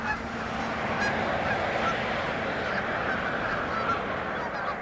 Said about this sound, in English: Initially, I went out at sunrise to get away from sound of man, the airplanes and cars and things, because the road goes right through the marsh. In first collecting in the morning, you hear a murmur of geese in the background.